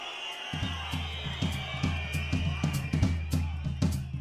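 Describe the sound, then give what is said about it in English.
A large crowd in central London, celebrating the end of the war after Churchill's speech, cheers and shouts in a dense, continuous roar, with a steady rhythmic pulse of claps or beats running underneath throughout. “In central London, the crowds are heaving and still reeling from Churchill's speech.”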